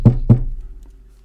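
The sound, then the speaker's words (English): Two quick, solid knocks of knuckles on a solid wooden desk, fairly loud, spaced about a quarter second apart, each with a short dull ring before fading to quiet. “Okay, these things can be a particle, like a little particle that makes up the solid desk I'm knocking on right here.”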